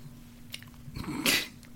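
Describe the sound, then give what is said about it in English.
Someone munching on ice cream: a small wet click, then a short, louder burst of smacking, slurping mouth noise lasting about half a second. No one speaks. “As you munch away on your ice cream.”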